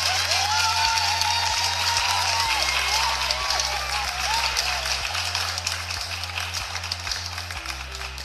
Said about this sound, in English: So y'all give a round of applause for Kim's Customs down there in Albany, Georgia.